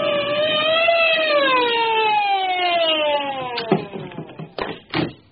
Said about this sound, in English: I heard the police siren and slowed down. Pull over and stop!